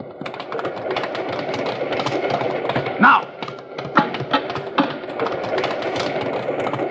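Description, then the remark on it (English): A moving steam cattle train rumbles steadily, its rhythmic clatter and chugging continuous throughout, with a brief voice speaking over the noise. “Well, that's the cattle train, all right.”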